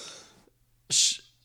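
A man gives one loud, explosive cough, a short harsh burst after a moment of silence, with a softer breathy rush just before it.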